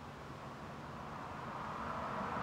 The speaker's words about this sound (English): And that's what a car going by sounds like. It's pretty loud. Pretty loud in this shotgun mic.